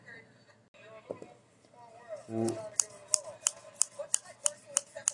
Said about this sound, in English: Rate my scissors. Ooh. I think that one's going to get more attention. Smoother. Yeah. Smoother slice.